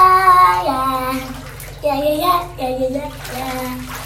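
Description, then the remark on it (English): Water runs steadily from the faucet into a bathtub, a continuous hiss and splash beneath a young girl freestyle-singing a wavering melody in bursts throughout. “I'm in the bathtub with the water running.”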